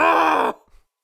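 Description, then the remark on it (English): A single loud, strained vocal cry of pain, performed by a voice as screaming Foley work, lasting about half a second before cutting off sharply, followed by a faint trailing breath and then silence. “Give me a little screaming Foley work.”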